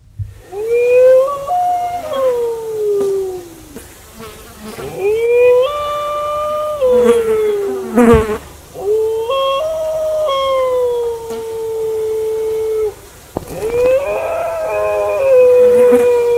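Dingoes in the Australian outback howl back and forth in long, wavering, tonal calls that rise and slowly fall. Several overlapping voices trade howls with brief pauses, loud and clear with no talking.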